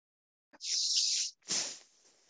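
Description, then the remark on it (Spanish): A person makes two hissing breaths in imitation of a viper as a breathing exercise: a long, steady, sharp hiss, a brief pause, then a second hiss that starts breathier and fades out softly. “También pueden compararlo con sonidos de animales como una víbora.”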